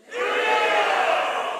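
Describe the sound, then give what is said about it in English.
A crowd bursts into loud, overlapping yelling all at once as people shout out their favorite sports teams on a count of three, a dense wall of shouted voices that holds steady for under two seconds with no single voice standing out. “So on the count of three, you yell out your favorite team, whatever.”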